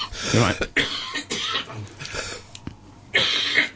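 A series of harsh coughs in quick bursts, loud and rough, with brief gaps between fits and no clear speech.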